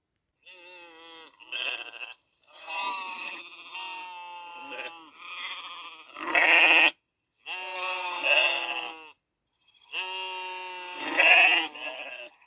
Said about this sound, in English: The first animals I hear are sheep.